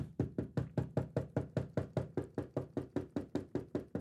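Rapid, evenly spaced knocking on a solid surface, roughly five knocks per second, loud, continuing steadily throughout with no voices.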